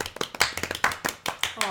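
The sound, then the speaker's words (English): Quick, sharp hand claps repeat at a steady, brisk pace, about ten in under two seconds, with some voice sounds mixed in underneath. “She didn't record a clapping noise that we could repeat every time. Oh, yeah. Or a thank you for our clap.”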